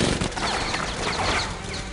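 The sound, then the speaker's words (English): Glass shatters and rains down amid a dense burst of gunfire, a loud, chaotic, continuous crash with bright tinkling shards scattering throughout, with no voices. “There's hostages in there, so let's bring down a rain of broken glass.”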